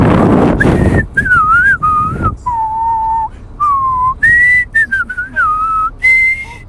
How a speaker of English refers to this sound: And they started to ride their bicycle down towards Froggy's neighborhood in Frogopolis. And it was so great. And Froggy started whistling again.